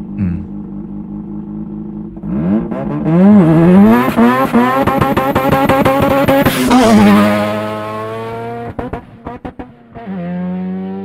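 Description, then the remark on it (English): A Mazda RX-7 rotary sports car engine idles, then revs hard in rising and falling sweeps, climbing to a high-pitched scream before dropping back to a rough idle, heard clearly from outside the car. “So this is still the RX-7. We're now listening from a different perspective.”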